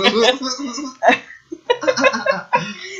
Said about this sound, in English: Excuse my cough.